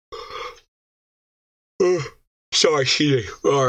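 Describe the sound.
A big, drawn-out yawn with breathy, groaning bursts that rise and fall in pitch across a few seconds and a short pause in between.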